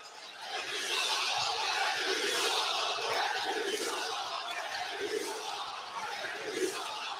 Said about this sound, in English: The crowd is taking a little issue.